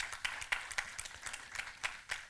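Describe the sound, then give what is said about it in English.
Scattered audience applause, a soft wash of many hands clapping with a few sharper claps standing out at an irregular rhythm. No one speaks over it. “Why don't you applaud the idea of freedom in that sense?”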